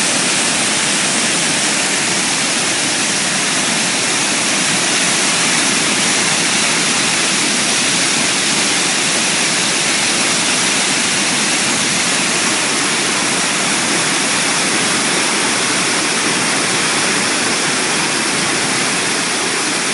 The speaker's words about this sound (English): And what you get is overflowing rivers. What you get is a powerful, strong river with waves, they said, that crested at about 12 feet above the riverbanks. It was spectacular.